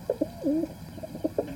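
Pigeons cooing, a series of soft, low throaty calls with one longer rolling coo in the middle, followed by a few short burbling notes over faint background hum.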